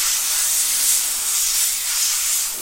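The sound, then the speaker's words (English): A steady hiss of compressed air from a keyboard duster, one continuous bright spray lasting a couple of seconds with slight swells in loudness, no voices over it. “It's a keyboard duster.”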